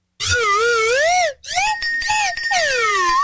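A loud slide whistle swoops up and down in wavering pitch glides, pauses briefly, then returns with shorter rising and falling slides before a long descending swoop. No one speaks.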